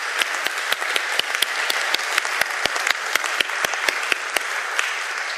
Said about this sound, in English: So, folks, first, could we just give these people a round of applause? I'm not going to let you guys go yet, but I want to give you a round of applause here.